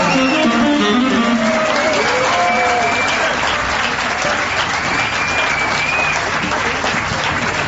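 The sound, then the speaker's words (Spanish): Sustained audience applause welcoming a trumpet player, a dense, steady clatter of many hands clapping at once, staying loud for several seconds with a few faint voices and whoops rising over it. “Extendemos el aplauso para recibir a la dorada trompeta de inglés.”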